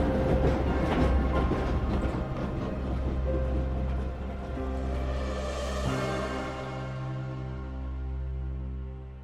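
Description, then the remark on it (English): A train pulls away, rumbling loudly along the rails, with a rapid clattering rhythm at first that smooths into a steady, deep drone as it moves on. No one speaks. “Then the train chugged off again, disappearing into the ether.”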